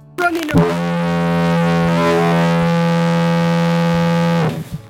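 A single long, loud horn blast holds one steady low, brassy pitch for about four seconds before cutting off abruptly, with no voices over it.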